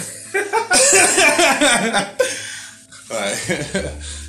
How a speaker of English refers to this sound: That cough made me, like, twice as high. That was a great cough. Yeah, I need more coughs like that.